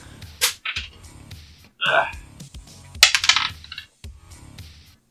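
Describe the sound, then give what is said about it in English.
Dice clatter across a hard tabletop in several quick bursts of sharp clicks and rattles as a player rolls for an attack in a tabletop game, fairly loud, with a brief faint voice-like sound between them. “Roll your attack, sir.”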